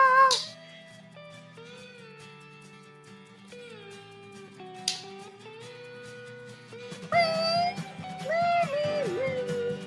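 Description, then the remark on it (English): A person mimics a cat with drawn-out, wavering meow sounds, repeated several times over steady background music, growing louder and more insistent toward the end. “Meow, meow, meow. Meow, meow, meow, meow, meow, meow, meow.”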